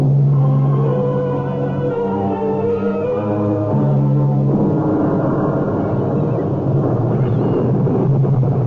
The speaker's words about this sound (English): That rain's making me sleepy. I hope it stops that morning so we can start our search.